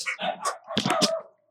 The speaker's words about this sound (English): Something's at the door. I too have barky dogs. They usually are better than this.